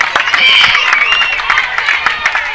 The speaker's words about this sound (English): Lions crowd trying to give this a little bit of energy right here, looking to get out of this inning.